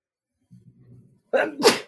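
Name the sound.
sneeze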